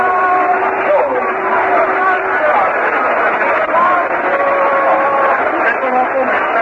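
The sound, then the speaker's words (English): A large baseball stadium crowd keeps up a steady, fairly loud roar of clapping and cheering for player Mac Jones after his running catch, many voices blending together throughout without any break, including fans in the left field bleachers. “And Mac receives a fine round of applause, especially from those fans behind him in the left field bleachers.”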